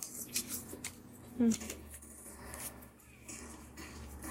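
Soft papery riffling of a deck of 'I am' message cards being shuffled, in a few quick rustling bursts with a louder snap near the middle, against a quiet background.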